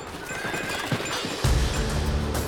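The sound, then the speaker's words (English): A horse whinnies, its shrill neigh rising and wavering, while the hooves of slow-moving horses pulling sleighs in the wind thud and clop steadily on the ground, growing heavier in the second half. No one speaks. “The horses moved slowly as everyone huddled together, faces down and away from the wind.”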